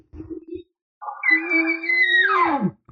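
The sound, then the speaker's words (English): An imitated bull elk call, a low, abrasive sound answering a real bull, pitched at about 4 to 5 on a scale of 10: a couple of short, low grunts, then a sustained, raspy, harmonic tone lasting over a second that bends sharply downward at the end. No talking. “So as soon as that bull answers you, because he's going to try to call that cow again, I give him a low, abrasive, emotional sound telling him to stay back.”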